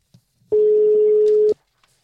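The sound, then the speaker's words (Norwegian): A single steady ringback tone purrs for about a second on a phone line as a call is placed, clear, followed by a brief silence before the next ring. “Nå ringer det et godt tegn.”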